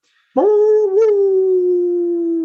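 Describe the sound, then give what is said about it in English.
A man's voice in West Central Wisconsin imitates a dog with one loud, drawn-out howling call. It starts abruptly, wavers briefly, then holds a steady pitch for about two seconds with no other talking. “Ooh, he even gives the nice bark.”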